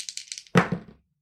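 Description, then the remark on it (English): Four twelve-sided dice (4d12) are rolled for damage: they rattle briefly in a quick series of light clicks, then hit a table with a solid thunk and a short, fading clatter before going quiet. “Roll it. 4d12.”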